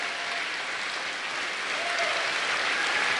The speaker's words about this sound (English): But everybody's going to clap anyway.